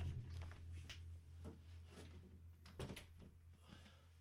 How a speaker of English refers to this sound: Oh, I forgot to close the door. I was saying Google a bunch of times and my Google Home Max went off. Hold on, let me just...